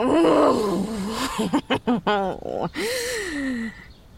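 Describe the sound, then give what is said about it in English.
A loud woman's voice gasps, then breaks into a series of choppy, throaty bursts that swell into a long, strained roar-like cry. “She lets the knife fall from her hand and gasps. The gasp quickly turns into a throaty roar.”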